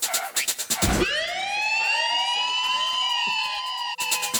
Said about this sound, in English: Right, do I need to play a siren?